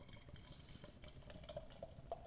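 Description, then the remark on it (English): A dark, naturally hazy beer brewed with barley, wheat, oats, raspberry, cocoa nibs, hops and yeast is poured into a glass, a steady soft splashing stream with a few bright gurgling glugs toward the end, fairly quiet and with no talking. “Let's get this into the glass then.”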